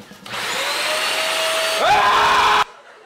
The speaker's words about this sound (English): The scream of the vacuum, it gets me every time. It's like the first time I watched it. Every time he screams, I have to laugh.